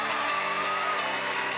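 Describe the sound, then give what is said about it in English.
A crowd of children cheers and shouts together, cheering on contestants in a candy-in-the-mouth race game, in a steady, loud wash of high voices that holds without a break for over a second. “You guys ready to cheer them on? Cheer them on.”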